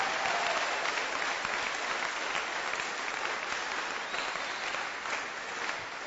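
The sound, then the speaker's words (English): A church audience claps for the Lord steadily for several seconds, a dense, even roar of many hands with no voices standing out, holding at a constant loudness throughout. “Oh, give the Lord a wonderful clap of him.”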